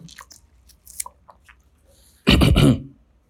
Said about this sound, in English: Hold on, let me drink water. My voice is getting too raspy.